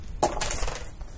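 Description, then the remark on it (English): Dice rolled for a healing check clatter onto a hard table, a sharp first impact followed by a quick run of smaller rattling clicks as they tumble to a stop on a 7, fairly clear with no voices. “Oh, we have rude dice tonight.”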